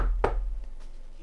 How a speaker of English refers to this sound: I get to knock on this guy's door, and I get to speak to him